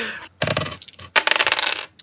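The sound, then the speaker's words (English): Two dice clatter across a hard surface during a tabletop role-playing game in two bursts of rapid, bright clicking and rattling, each tumble tapering off as they settle, both landing on one. No voices are heard. “At one. Both of them are nat ones.”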